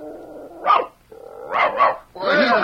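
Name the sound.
dog barking three times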